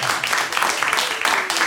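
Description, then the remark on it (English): Sustained audience applause for both competing teams, a dense wash of many hands clapping at steady loudness with no voices rising above it. “Ladies and gentlemen, on that ominous note, please, a big round of applause for both of our teams.”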